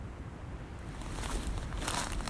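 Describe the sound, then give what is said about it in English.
Footsteps of two people crunch along a path through a perfect layer of undisturbed fresh snow, two or three soft, gritty steps at an unhurried pace over a low outdoor rumble, quiet, with no voices. “With every step, we broke the perfect layer of undisturbed snow.”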